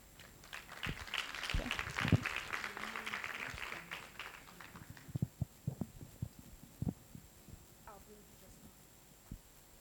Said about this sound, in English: So you should really applaud your leadership for that.